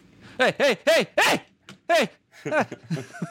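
A dog barks loudly, a quick run of four sharp barks, then a brief pause before several more rapid, slightly rougher barks.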